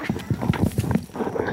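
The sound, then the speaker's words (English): Feet kick and scuff at dirt in a quick, steady rhythm of about eight dull thuds with gritty scraping, tapering into softer rustling at the end. “Stop kicking dirt. I can hear it on the fucking tape recorder.”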